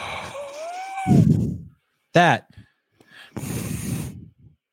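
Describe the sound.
Heavy breathing into a microphone, two long, noisy, rushing breaths with a brief voiced sound between them, loud.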